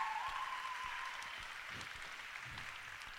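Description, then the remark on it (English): A crowd claps steadily in sustained applause given to God, a dense, even wash of many hands that stays fairly loud throughout, with a faint tone briefly audible at the start. “Yeah, you can give God a round of applause.”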